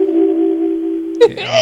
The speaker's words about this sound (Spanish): Cuando tú hablas por teléfono conmigo, si dejas el radio con el volumen arriba, sale ese ruido tan agradable. Vamos a escuchar el ruido, vamos a oírlo.